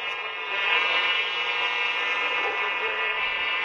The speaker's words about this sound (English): For the first time, a radio was used to conduct a sea rescue, and so the sound you get for that is radio static. Sounds scary.